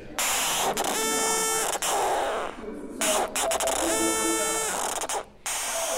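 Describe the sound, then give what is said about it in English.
A synthesizer oscillator being adjusted: two bursts of a raw, buzzy, harmonic-rich tone rise out of a steady wash of loud hissing noise, with short gaps and clicks between them. “I'm turning the oscillator.”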